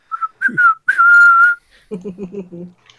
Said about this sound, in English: … just starts whistling to like interrupt the conversation just to let them know that he's here and listening.